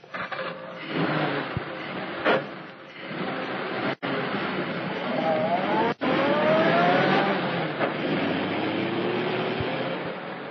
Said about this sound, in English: The two men pushed the automobile down the slope of the road, jumping in when the car began to gather speed.